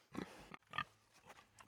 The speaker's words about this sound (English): what's that noise? Do you have a pig with you? Would it kill you to show some respect? His name's Pig Thulu.